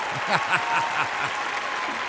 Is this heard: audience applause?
yes